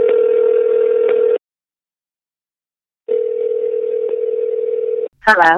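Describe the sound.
A telephone ringing tone from a blind call placed to a VH1 personality sounds as two long, steady buzzing tones separated by a pause of silence, and a voice briefly answers right at the end.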